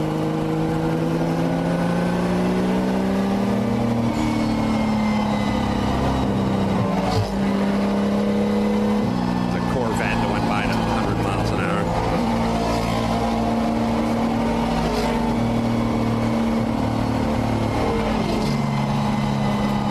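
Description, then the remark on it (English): Loud, sustained roar of race car engines at high speed on a racetrack, Thursday at 10 in the morning, with pitch rising and shifting as cars accelerate and pass, steady throughout with no talking. “So, that's how fast the race cars were going so on the racetrack.”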